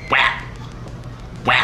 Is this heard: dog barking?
yes